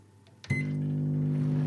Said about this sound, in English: We then popped the sponge into the microwave for about a minute.